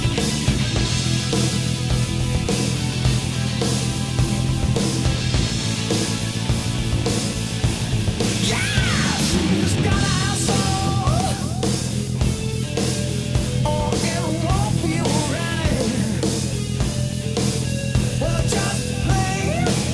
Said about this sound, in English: it's the drill, dude. It gives it away every time. I mean, who plays a guitar with a drill that you get from Home Depot?